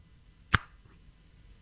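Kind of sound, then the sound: human body sound, fingers snapping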